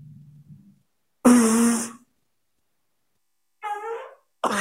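A low, faint rumble, then a loud, buzzy fart-like blast lasting under a second, followed after a pause by shorter raspy fart noises, some of which may be imitated by voice.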